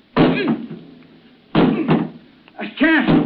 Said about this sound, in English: The door. I can't open it. It's jammed. Well, try breaking it down. Hurry!